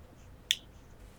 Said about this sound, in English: I'm messing with this USB. Oh, is that the clicking? Maybe.